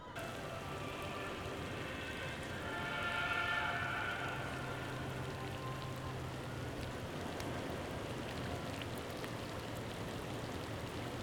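Steady rain patters continuously on a roof, a dense, even hiss of drops with a faint low hum underneath and a brief swell in intensity early on; no voices.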